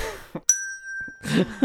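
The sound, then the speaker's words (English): A single bright strike of a 'bad joke bell' rings out with a clear, sustained metallic tone that slowly fades, framed by brief bits of people talking before and after. “This is the bad joke bell, or like the punny joke bell, or anytime there's a anyway.”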